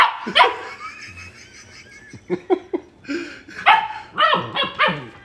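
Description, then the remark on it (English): A dog barks repeatedly, a series of sharp, loud yaps and barks in uneven bursts, with a higher whine-like note early on. “Okay, everybody, that was Willow. Thank you for your appearance.”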